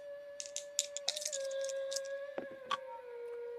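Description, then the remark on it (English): Dice clatter in a few quick, sharp clicks and rattles, scattered over a couple of seconds above a steady humming tone in the background. The dice are rolled in a game to see whether the players have an encounter. “We're going to grab our dice. We're going to see if you guys have an encounter.”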